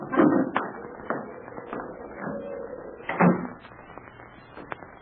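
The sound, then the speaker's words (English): A door that had blown open is pushed shut with a couple of solid thuds a few seconds apart, surrounded by lighter knocks and rattles of the latch and frame. “Hey, the door blew open. I'll shut it.”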